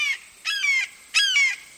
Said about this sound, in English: Suddenly, a startling sound breaks the silence. A male limpkin has awakened. This relatively tall bird, whose dark brown feathers are streaked with white, stretches and calls again.